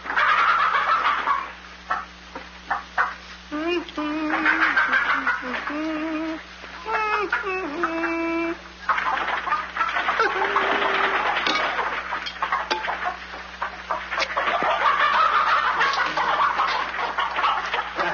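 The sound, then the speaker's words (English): A flock of chickens being fed clucks and squawks busily throughout, with harmonic calls and chatter densely overlapping, fairly loud, with a constant low hum underneath. “Well, feed the chickens.”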